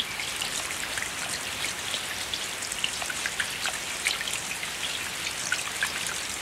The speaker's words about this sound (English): I put that in the notes purely so that we get it in the edit. Oh, wonderful. At some point, now, we'll get that audio. We're all going to pause and listen to those raindrops.